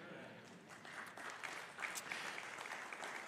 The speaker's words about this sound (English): That was a mediocre clap, but we're going to pray after that, okay?